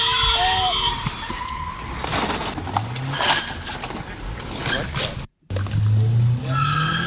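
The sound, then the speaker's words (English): A car roars away with tires squealing on Hoover Street in Los Angeles, high shrill screeches over a loud, rumbling engine that surges and revs, briefly cutting out before the screech and roar return. “And you hear him take off?”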